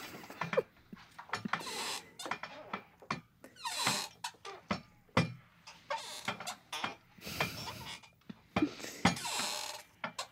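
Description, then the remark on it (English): A voice imitates whale calls with a rapid, irregular string of short squeaks and clicking bursts, some slightly drawn out, of varying loudness, with no words spoken. “Just make squeaks.”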